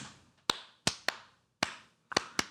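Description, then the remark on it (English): A slow, sparse round of hand claps for Tetron: about seven sharp, crisp smacks at uneven intervals, a couple landing close together, with quiet gaps between and no voices. “Slow clap for Tetron.”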